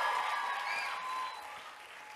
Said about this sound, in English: Go on back, okay? Y'all give him a big hand clap. A big hand clap.